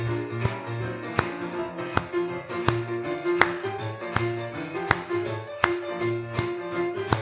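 An audience claps sharply and steadily on beats two and four over a running music track, about one clap every three-quarters of a second, crisp and loud against the sustained instruments.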